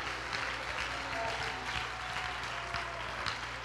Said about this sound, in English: We need to stand to our feet and clap our hands and say, God, give me that vision.